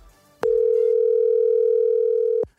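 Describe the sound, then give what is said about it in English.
A phone line tone on an outgoing call to a friend who is not answering: one loud, steady electronic hum that starts abruptly, holds for about two seconds, then cuts off sharply, with no voices. “Let me call him back, man.”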